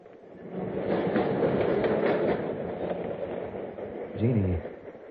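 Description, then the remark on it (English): A subway train rumbles and clatters steadily along the rails, loud, with a brief tonal squeal rising near the end of the ride, as passengers ride it home. “They had dinner and danced a lot, then took the subway home.”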